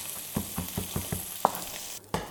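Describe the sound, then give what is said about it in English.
A knife chops garlic steadily on a cutting board, about seven quick, sharp knocks in an even rhythm, over a constant soft background hiss with a brief pause near the end. “I'm chopping my garlic.”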